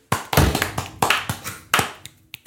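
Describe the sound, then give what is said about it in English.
A hand bangs on a table about ten times in an uneven rhythm, with loud thumps and a short ring after each hit. No one speaks. “Bang on the fucking table then.”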